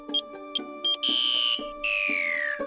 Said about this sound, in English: Can someone turn off that banana alarm? I think we get that Ronald is gone now.